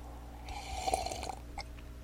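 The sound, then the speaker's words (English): A brief liquid sound of Johnny Walker Black whisky being poured and sipped, a soft wet slurp lasting under a second, followed by a small click and a quiet breath. No one speaks. “Not that they have anything to do with it, but I thank them nonetheless, and I'm going to have a sip of that right now.”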